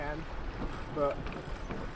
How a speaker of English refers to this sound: I feel how much the boat is heeling, or like how much it's leaning, how fast it's going. I can listen to the sail.